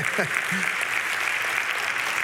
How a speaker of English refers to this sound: you can clap at that.